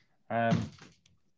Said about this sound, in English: Hang on, I'm just shutting the door.